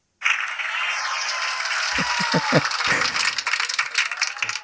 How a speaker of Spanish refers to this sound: Son los aplausos de nuestra audiencia para ti. Del público.